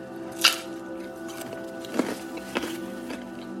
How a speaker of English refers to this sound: I'm eating baby carrots, and man, the sound of chewing these carrots is so loud in my own head.